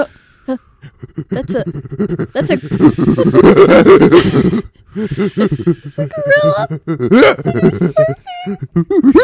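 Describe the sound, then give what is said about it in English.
A person imitates a gorilla with loud, throaty grunts, hoots and huffing roars, rising into rough bursts and then high-pitched hooting calls over several seconds. “And then I was like, I gotta do a gorilla.”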